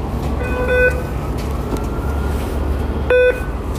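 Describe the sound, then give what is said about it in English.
Two short electronic beeps from a transit fare card reader as an Orca card is tapped to pay the fare, each a clear steady tone, sounding a couple of seconds apart over a constant low rumble of station or traffic noise. “So you heard the beep. That means that I tap my Orca card.”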